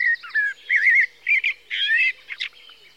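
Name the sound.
songbird singing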